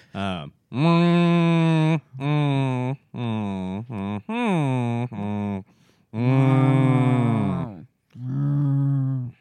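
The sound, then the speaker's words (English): A man imitates a cow with a series of long, drawn-out vocal moos, about six sustained lowing calls in a row, loud with short pauses between them. “So let me translate that for you in case he's in cow form.”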